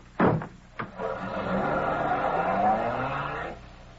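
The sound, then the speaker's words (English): Two sharp car-door slams, then a getaway car's engine roars up and revs with a rising whine for a few seconds as the car drives off quickly, loud, with no talking. “Is that car there? Yeah, yeah. Good. Everything okay? Yeah, get going.”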